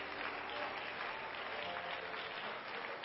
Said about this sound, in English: So why don't all the home folks give our guest a hand clap today?